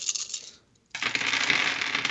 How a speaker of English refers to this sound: Oh, listen to all those dice fall. That's a lot of dice.